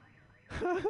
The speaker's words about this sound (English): That dude is cool as shit. You see how he set off that car alarm? It does not get cooler than that.